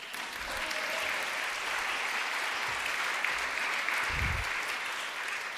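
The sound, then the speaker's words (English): A crowd at a library event claps steadily for WEAA's Mark Steiner, a dense wash of applause that holds at an even level for several seconds, with a few low thumps underneath and no one speaking. “Because not only will our special guest be interviewed by a good friend of the library, former frat board member, WEAA's Mark Steiner, you may applaud.”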